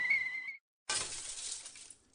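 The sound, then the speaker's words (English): A light bulb's glass gives a brief high, ringing crack, then after a short silence bursts into a loud, bright shatter whose tinkling fragments fade over about a second. “Army Special Operations Division dispensed a non-toxic bacillus to the New York City subway system by way of cracked light bulbs.”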